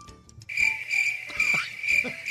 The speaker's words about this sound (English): Like the crickets.